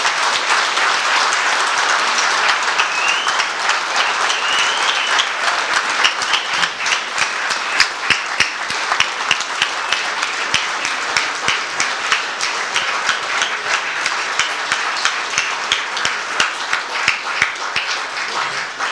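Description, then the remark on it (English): A large audience applauds steadily after a speech, a dense, even wash of many hands clapping that holds at a consistent loud level for the whole stretch with no voices above it. “Absolutely marvellous speech, as you can see from the very generous round of applause.”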